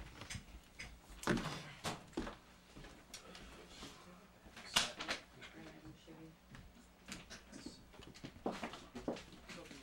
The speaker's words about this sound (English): Interview time, okay. Putting chairs in, okay.